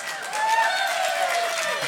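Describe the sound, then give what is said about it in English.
An audience claps loudly and steadily, a dense wash of applause mixed with cheering voices that holds at a strong level for a couple of seconds. “Okay, pretend you're at a football game and really clap, okay?”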